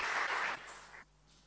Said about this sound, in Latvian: Paldies par aplausiem, tiešām Dievs ir labs, Dievs, vai ne? Viņam vienmēr var aplaudēt.